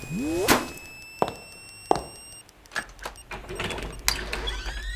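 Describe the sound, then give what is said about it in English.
A series of heavy, irregular bangs and cracks as a wooden door is battered apart, about five forceful impacts, with whining mechanical tones and debris rattling between blows. “This isn't the first door I've demolished today!”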